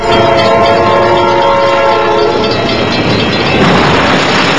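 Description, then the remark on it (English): An Amtrak train plows through a big-rig semi-truck trailer at a railroad crossing in Oxnard: a loud, sustained train horn blares, then gives way to a roaring, crunching wash of noise as the train barrels through the trailer, continuous, with no voices. “Boy, you can see the semi-truck trailer disintegrates as the Amtrak train plows right through it.”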